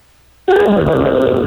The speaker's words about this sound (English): Not Ashley, but Scarface the dog. Scarface, how are you, sir?